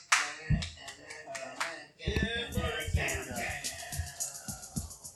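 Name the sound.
audience applause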